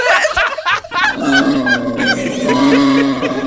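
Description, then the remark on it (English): A wild boar sound effect: loud, harsh squeals and honking grunts, a few choppy bursts at first, then a long, strained, continuous squeal with no talking over it. “It's a sound effect of a wild boar.”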